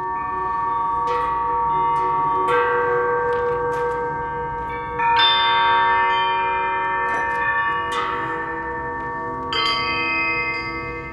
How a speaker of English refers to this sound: This was his little sanctuary. He made his own chimes out of shackles.